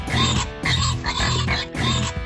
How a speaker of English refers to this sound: All the pigs shouted hooray and started dancing.